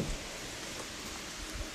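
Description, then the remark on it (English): Steady rain falls without a break, a dense, even hiss of drops pattering on a surface, fairly soft, with no voices. “oh man, the rain's coming, I gotta move, sorry.”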